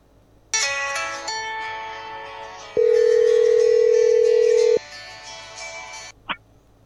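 Telephone tones play alone as a call back is placed: a steady dial tone shifts pitch, then a loud, unbroken ringing tone holds for about two seconds before the line cuts off with a soft click.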